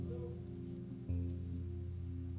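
Soft, papery rustling of book pages being turned to the book of John, chapter 15, faint and scattered over a steady low electrical hum; no one speaks.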